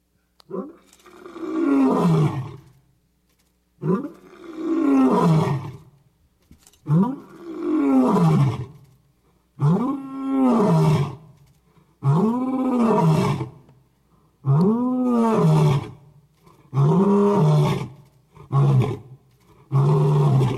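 A lion roars loudly, about eight deep, throaty bursts in a steady rhythm that grow shorter toward the end, with brief pauses between them and no talking.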